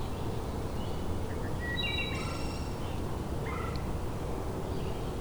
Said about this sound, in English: I'm hearing a couple singing right now. Here's the wood thrush.